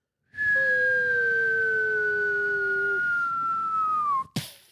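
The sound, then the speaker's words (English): A voice imitates a cartoon falling whistle, like in Roadrunner and Wile E. Coyote: one long, steady tone that glides slowly downward for about four seconds, then ends in a short, sharp burst like an impact. “A sound that sounded like something in a cartoon falling.”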